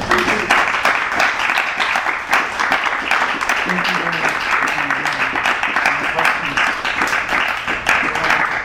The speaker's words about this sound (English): So one more round of applause, you guys.